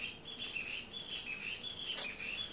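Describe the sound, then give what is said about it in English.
Birds chirp continuously outdoors, a steady run of high, thin repeated calls with no voices present. “It was a very cold winter, and these birds are rough.”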